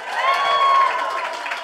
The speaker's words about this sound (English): Well, thank you so much for coming out. We always start these live shows by asking for a round of applause. If you've ever heard our podcast, Do Go On before.